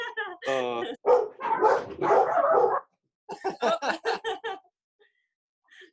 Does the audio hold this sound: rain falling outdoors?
no